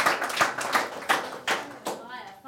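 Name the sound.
audience clapping hands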